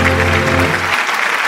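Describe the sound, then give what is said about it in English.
Loud, dense audience clapping fills the whole clip as a steady wash of many hands, with a low sustained musical tone underneath that cuts off about two-thirds of the way through. “The clapping is deafening.”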